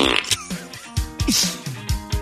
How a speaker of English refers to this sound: Broken. My fart box is broken. There it is. I busted my fart box, guys.